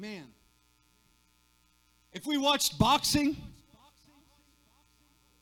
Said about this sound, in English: Man, there's a little echo in there.